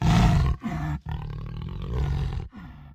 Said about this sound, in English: Right when we reached the grass, we heard a jaguar. They have this very unique, characteristic cough sort of sound that they make.